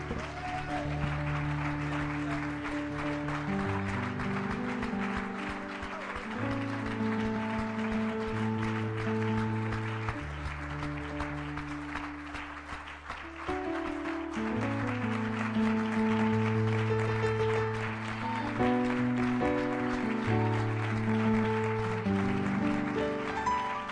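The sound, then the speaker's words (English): A church audience claps steadily and loudly as a clap offering to the Lord for the whole stretch, a dense continuous patter layered over sustained organ or keyboard chords that shift every few seconds. “All right, I want you to give the Lord a clap offering.”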